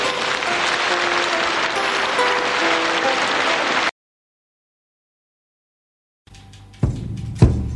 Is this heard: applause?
yes